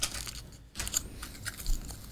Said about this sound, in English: This is the future of the show. It's just eating chocolate together.